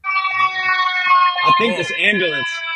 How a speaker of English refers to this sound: I think this police and this ambulance. Uh-oh. They're after me, actually.